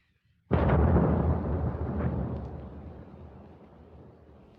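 A single heavy V-1 flying bomb explosion as it hits the ground bursts in after a brief silence, a loud, deep boom that rumbles and slowly fades over several seconds, with no voices.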